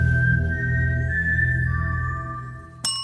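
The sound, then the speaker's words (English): Someone whistles a short four-note tune in G minor: quick G4, B-flat 4 and A4 eighth notes, then a lower held D4 half note. The sound is clear over a low hum, and a sharp click cuts it off at the end. “Lionsgate Entertainment owns this tune, described as, quote, a human whistling a G4 eighth note, followed by a B-flat 4 eighth note, followed by an A4 eighth note, followed by a D4 half note, in the key of G minor.”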